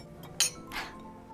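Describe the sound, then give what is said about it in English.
Two glasses, one holding a pink squirrel cocktail and one a martini, clink together in a quick, bright toast, a sharp ringing tap followed by a softer chime. “Cheers to Mother.”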